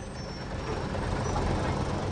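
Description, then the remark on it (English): A bus pulls away from Boston, its deep engine rumble steady, rising slightly in strength over a couple of seconds, with a broad airy hiss layered above the low drone. “Well, here we go. Bye-bye, Boston.”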